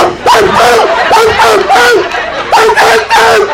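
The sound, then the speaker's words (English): A person imitates a yelping dog with a rapid series of loud, high, strained yelps, about seven or eight in a row, with a brief pause midway. “The dog.”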